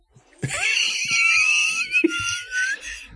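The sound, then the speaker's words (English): Cats fighting, with a loud, drawn-out yowl that wavers and slides in pitch for over two seconds, broken by a brief scuffling burst partway through. No talking. “I gotta throw a water bottle at the cats.”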